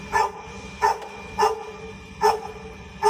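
A dog barks five times in a steady, evenly spaced rhythm, each bark short and sharp at moderate loudness, with no voices over it.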